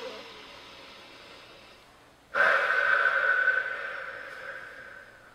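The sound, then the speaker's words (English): An airy breath during a relaxation exercise: a soft, steady inhale through the nose, then a sudden louder rush of air breathed out that slowly fades away. No one speaks. “Then let's just sit back, relax, take a nice big breath in through your nose, and then breathe it all out, let it all out.”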